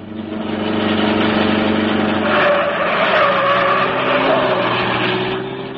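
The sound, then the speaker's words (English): The Green Hornet's car, driven by Cato, speeds right past waiting men, its engine roaring loudly, tires squealing through the middle of the pass before the engine noise carries on. No voices are heard. “Drive right past them, Cato.”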